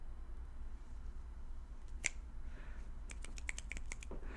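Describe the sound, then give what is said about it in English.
Scattered finger snaps from a small audience at a poetry reading, snapping instead of clapping: one crisp snap alone, then a quick flurry of about half a dozen overlapping snaps, fairly quiet against a low background hum. “At poetry readings, people snap their fingers instead of clapping, because once poetry lands really well, clapping is kind of jarring.”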